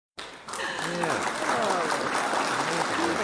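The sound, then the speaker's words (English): A canned applause effect, triggered by pressing a clap button, kicks in abruptly and holds at a steady, dense roar of clapping for about three seconds, with voices talking and exclaiming over it. “Hit the clap button again.”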